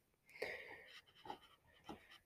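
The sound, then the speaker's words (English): A dog panting in quick, breathy bursts, three or four rhythmic huffs of air with a slightly wheezy edge, no voices alongside. “So you can hear that as my dog.”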